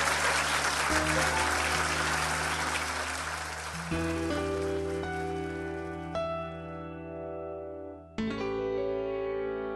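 An audience claps loudly and steadily for Marcus Chown, the dense applause gradually thinning as a sustained musical tune comes in and takes over, with a brief drop before a final chord.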